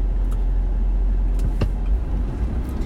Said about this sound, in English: Sorry, I'm in traffic.